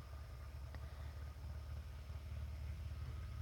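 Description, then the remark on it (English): A neighbor's motorcycle engine idles before leaving, a low, steady rumble with a fast throbbing pulse that holds even throughout, fairly quiet, with no voices. “My neighbor's leaving on their motorcycle.”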